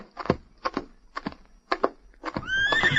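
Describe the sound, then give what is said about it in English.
A horse being brought to a man outside the front gates, its hooves clopping in an uneven, unhurried rhythm, then the animal lets out a loud, quavering whinny at the end. “I brought your horse and a gun.”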